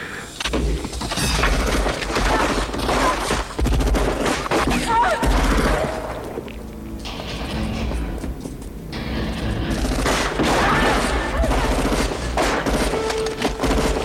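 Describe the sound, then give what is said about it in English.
Loud, rapid video game gunfire crackles in dense bursts and sustained fusillades, easing briefly in the middle before the heavy barrage of shots picks up again. “No, he got shot in the chest.”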